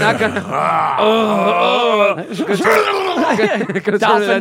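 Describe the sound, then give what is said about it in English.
A person imitates a dolphin, making a long wavering high-pitched squeal followed by a run of quick, warbling squeaks and chirps, loud and with no other talk. “Dolphin noise.”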